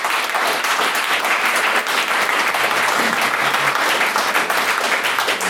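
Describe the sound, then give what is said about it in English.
Steady, dense applause from a sizable audience in a debating chamber after a speaker's maiden speech, many hands clapping at once for several seconds at an even, fairly loud level with no voices. “Another round of applause for her maiden speech in the chamber.”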